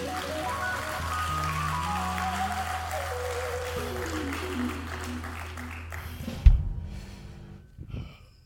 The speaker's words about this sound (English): If y'all could, give our mighty God a hand clap praise.